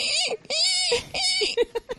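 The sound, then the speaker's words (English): A person imitates a pig squealing: three long, shrill, wavering squeals in quick succession, then a few short, choppy squeaks, loud and high-pitched with no other sounds around them. “Wow, that's a scary pig squeal.”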